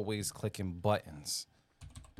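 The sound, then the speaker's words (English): Keyboard typing and button clicks, partly buried under someone talking, with a short run of clicky taps near the end. “We trying to multitask like a motherfucker. We always clicking buttons, man.”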